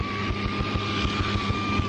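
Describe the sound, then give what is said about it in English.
The piston engine of a small Cherokee airplane drones steadily as the run-up finishes before takeoff, with a low rhythmic throb and a steady high whine layered over it, loud and continuous with no talking. “I'll pick up as I'm finishing the run-up and ready to go.”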